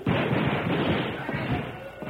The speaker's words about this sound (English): That was rifle fire. Yeah, that's right. Rogers has made his move.